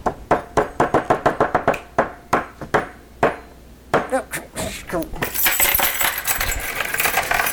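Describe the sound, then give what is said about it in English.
Someone bangs rapidly on a school door, a quick run of a dozen or so sharp knocks, then a few scattered heavier thuds before a broad rushing noise takes over. “Cuts to me, and I'm banging on the school door.”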